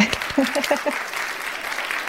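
A round of applause: dense, steady clapping at a fairly even loudness throughout, with a few short, pitched vocal cheers rising above it near the start.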